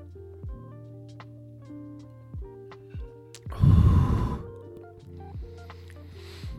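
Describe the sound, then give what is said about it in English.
A quick swallow of whiskey followed by a loud, breathy exhale into the mic, over a steady low hum with faint ticking and clicks in the background. “Let me take this last swig of whiskey.”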